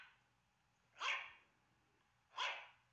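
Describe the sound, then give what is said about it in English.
A dog named Kobo barks twice, about a second and a half apart, each bark sharp and fairly loud against a faint low hum and no talking. “I told you to watch the dog.”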